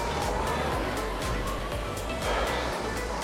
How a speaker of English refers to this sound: It's not very well sounding. Bin lorry, is it?